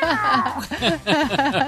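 A human voice imitates a cat as a radio sound effect, giving several fairly loud meows in quick succession, each with a rising and falling pitch, with no other sounds around them.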